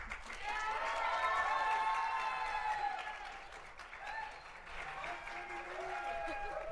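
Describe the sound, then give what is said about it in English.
Sustained audience applause at a live show, voting for the Rat Queens to set a trap and wait for Ambrose. A dense wash of clapping mixed with whoops and cheering voices holds steady for several seconds, eases briefly partway through, then swells again. “If you want them to set a trap, please applaud now.”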